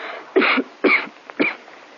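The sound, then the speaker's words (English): A tall, blonde young woman with a bad cough coughs three times in quick succession at a home in Beverly Hills, harsh, chesty bursts, the last one shorter, with no talking around them. “She was a tall, good-looking girl with blonde hair and a bad cough.”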